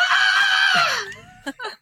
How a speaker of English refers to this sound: Is it safe to say that the Toblerone chocolate burns into … skin? Oh, it hurts a little. I scream.